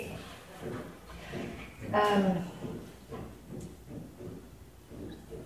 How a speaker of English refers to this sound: What's that noise? Why did we hear that out? Somebody's sawing. Oh, it's sawing.